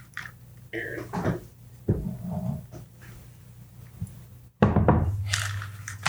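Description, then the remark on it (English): An old-style bottle of Aaron 21 year whisky is taken down from a shelf: a few dull knocks and thunks of glass and wood, then a louder clattering scrape near the end, with no talking. “I just reached up and grabbed the Aaron 21 just because it's the closest one.”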